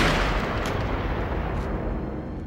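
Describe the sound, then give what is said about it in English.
A single loud, booming gunshot at a front door around 10:15, whose deep echo rolls on and fills the space for a couple of seconds, heavy and low like cannon fire, with no voices. “A shot rings out.”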